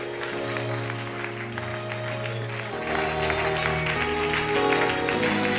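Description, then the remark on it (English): A church audience claps their hands while praying, in a steady, dense patter over loud sustained keyboard chords, with the music swelling slightly louder about halfway through. “Clap your hands and pray right now.”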